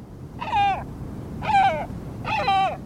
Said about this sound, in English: This bird's broad black wings measure more than 5 feet across, in bold contrast with its white head and tail. Its beak is long and thick. A bald eagle might come to mind, but this is no eagle. It's a great black-backed gull, the world's largest gull.